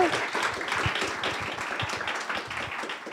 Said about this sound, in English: And keep clapping and add a little bit of a cheer too, because I also want you to welcome up